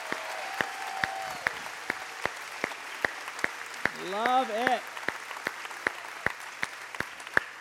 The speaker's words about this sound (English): So if you're a dad, can you please stand near where we're at? We're going to give you a round of applause. Yeah, come on.